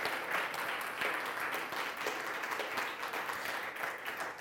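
An ethical culture audience applauds steadily after the announcement of a leader's upcoming formal installation, a dense wash of many hands clapping at once, fairly loud, holding an even level throughout without any talking over it.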